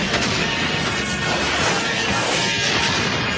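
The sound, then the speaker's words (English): Loud, continuous explosions from a movie trailer, a dense roaring rumble of blasts and crashes that keeps up without a break for the full few seconds, with no one speaking. “It's just explosions. Fucking explosions and shit.”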